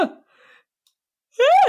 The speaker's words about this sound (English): Sorry, I just yawned in the middle of that.